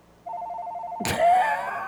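A house phone rings with a rapid, warbling electronic trill, steady, before a sudden burst of noise and a voice cut across it.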